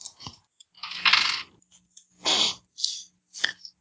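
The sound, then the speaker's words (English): Dice rolled during a game session clatter and tumble across a hard surface in a handful of short bursts: one longer rattling roll, then several quick knocks separated by brief silences. No voices. “Time this session they've rolled 90-something.”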